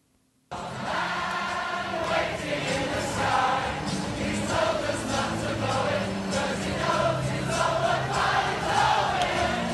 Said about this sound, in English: and crowd sing-alongs in Brixton.